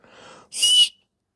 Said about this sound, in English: That's how loud it is, like dog whistles.